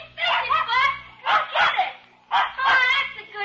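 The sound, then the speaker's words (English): A dog playing with a kid in an empty lot barks and yips playfully in three quick clusters, each a run of excited, high-pitched yaps separated by short pauses, clear with no one talking. “There's a kid and a dog playing in that empty lot.”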